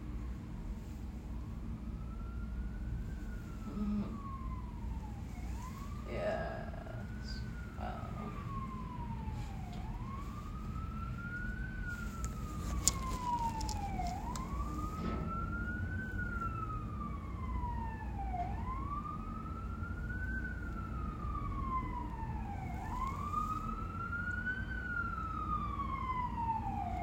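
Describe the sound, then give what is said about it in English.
Emergency vehicle sirens wail steadily outside, rising and falling in long sweeps every few seconds over a low rumble of traffic, with no one talking. “Okay, well, I really wanted to let the sirens ride out that time, but this time they didn't stop.”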